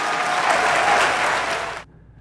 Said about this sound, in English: So she's getting raucous applause. She sounds like she's giving a real speech.